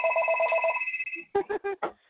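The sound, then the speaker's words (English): A telephone rings with a bright, warbling electronic trill for about a second, then cuts off as a voice starts talking. “See, that's the problem with doing direct connect. I didn't disconnect my phone.”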